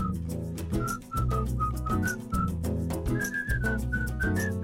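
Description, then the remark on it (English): A clear whistled melody carries a catchy hook, bright short notes rising and falling over a full, steady band backing with bass and drums. No one speaks. “So I thought it'd be cool to write a hook that is the whistle, and within the hook, within the whistling parts, we write verses.”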